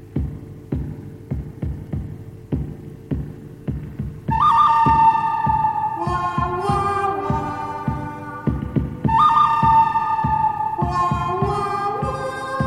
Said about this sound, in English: this is the original version from the movie The Good, the Bad, and the Ugly